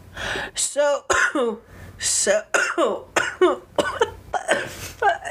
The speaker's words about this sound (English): this is going to be the coughing podcast. We've both just been coughing the whole time.